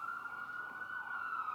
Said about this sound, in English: Jesus, we just pray for that ambulance, wherever it's going.